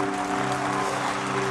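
An audience at a church service claps for Jesus in a dense, continuous wash of applause, steady and fairly loud throughout, with a sustained musical chord humming underneath and no voices.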